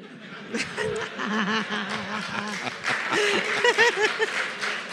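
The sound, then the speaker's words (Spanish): An audience breaks into loud, continuous laughter and chuckling, with scattered applause from only the men clapping underneath, a lively crowd reaction that holds steady for several seconds. “Ahí aplaudieron solo los hombres.”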